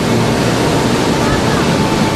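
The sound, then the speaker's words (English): Atlantic Ocean surf washing against the shore, a steady, loud rushing hiss of water that continues without a break for the whole couple of seconds, with no distinct individual wave crashes. “Being here, taking my shoes off, getting into the water, the Atlantic Ocean, I felt at peace, I felt at home.”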